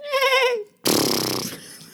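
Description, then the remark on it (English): A voice imitates a rude horse noise: a short, wavering whinny, a brief pause, then a loud, blustery lip-flapping snort that trails off. There is no other talking. “Rude horse noise.”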